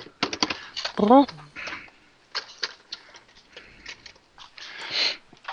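Parchment paper being unrolled, torn off and handled to line a baking pan, with crisp crinkling and rustling in irregular bursts and a brief vocal sound near the start.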